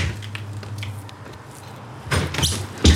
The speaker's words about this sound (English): We wait. When no one answers, we ring the bell. The door opens.